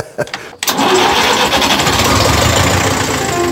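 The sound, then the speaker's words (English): A Ferguson tractor engine cranks briefly, then catches and roars into a loud, steady rumbling run, with no voices over it. “It's not the only Ferguson here. There are a number of tractors here, and I think you have so many that you're going to have to move them into the building you're working on next door.”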